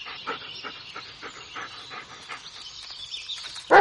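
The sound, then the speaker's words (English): In the video game Blair Witch by Bloober Team, the dog Bullet pants steadily in quick, rhythmic breaths, then lets out one sudden loud bark at the very end. No one speaks. “Dog's name is Bullet.”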